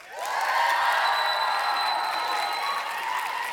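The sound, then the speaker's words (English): A crowd claps and cheers to vote between rattlesnake and shark, a sustained, dense burst of applause lasting a few seconds, with scattered whoops rising above the steady patter of many hands. “Some of you are clapping for both.”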